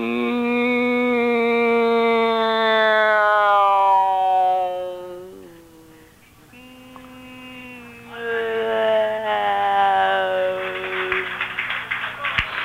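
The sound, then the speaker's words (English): A voice imitates an airplane with a long, steady droning hum that sags in pitch midway, then swells back up, with scattered claps at the end. “Let's make a airplane noise.”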